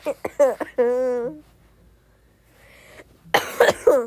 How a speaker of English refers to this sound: I'm sorry for coughing, guys.